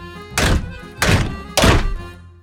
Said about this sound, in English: Why am I employing you if you can't even break down a simple door? Try harder, you fools!